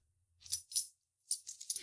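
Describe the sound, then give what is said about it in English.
A bunch of keys, including house, building and biology department keys, jingles and rattles in two short bursts of bright, metallic clinking, the second longer and busier than the first, with no one speaking. “No, seriously, what do all these keys do”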